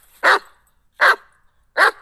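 A dog barks three times in a steady rhythm, each bark short, sharp and fairly loud, with brief silences between them and no voices.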